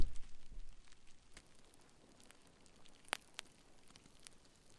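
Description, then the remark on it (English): Dry crackling of cellophane crumpled by someone in a studio to imitate a roaring fire, with steady fine snaps and a couple of sharper pops near the end, heard alone without voices. “What you're really hearing is someone mashing a bowl of cornstarch, a door in the studio, and crackling cellophane.”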